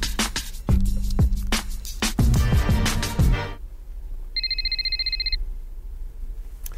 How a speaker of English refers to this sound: Hold on, Jalen. I think you're getting a phone call.